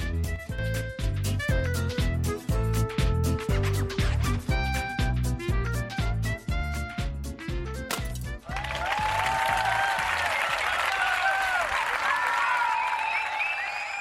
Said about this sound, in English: Gosh, don't you love that mazel tov and cheering when the glass breaks?